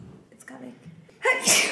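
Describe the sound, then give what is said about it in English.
A single loud sneeze bursts out near the end, a sharp breathy explosion following a moment of soft vocal murmuring. “Hug and sneeze.”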